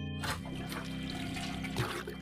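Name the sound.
toilet flushing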